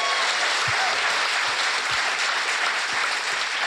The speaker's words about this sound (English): Big round of applause.